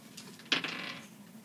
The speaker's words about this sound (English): And actually, as soon as you go in, go ahead and roll a perception check. So roll a d20 and then add your perception modifier.